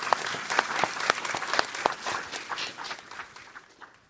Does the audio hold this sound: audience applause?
yes